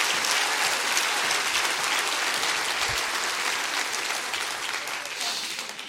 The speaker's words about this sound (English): Would you just clap your hands? Come on, you love him. Come on. You love him.